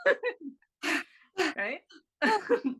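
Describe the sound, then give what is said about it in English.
A person demonstrates exaggerated breath-work breathing, a few loud, gaspy inhales and exhales in quick bursts with short pauses between, some tinged with voice. “what else is Pisces, like breath work, yoga, whatever that stuff means. You just like breathe like that.”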